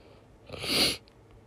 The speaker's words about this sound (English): You have to excuse my sniffling. I am still fighting a cold.